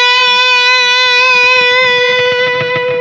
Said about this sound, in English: This has got a lot of distortion on it. And that, why guitar players like this for leads is because the sound lends itself to playing fast. When there's a lot of gain on, a lot of distortion, as you can hear, the notes last longer. So listen to this.